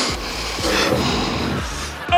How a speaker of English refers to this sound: Now that's what I call the president sniffing.